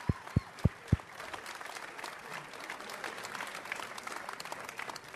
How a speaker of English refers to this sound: How about a round of applause for two more Hall of Famers, Tony Oliva and Rodney Klein-Carew right here.